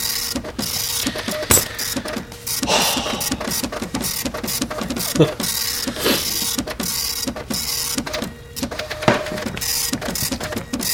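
A printer whirs and clatters steadily as it prints out a report, its mechanism stuttering in rapid rhythmic bursts as paper feeds through, fairly loud, with no talking.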